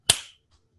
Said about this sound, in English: Hey, you know what you do for the sound syncing? What? You do like a clap. Oh, So that's a good point. here, I'll do it, and then when you go to sync up the sound for this part, it'll be.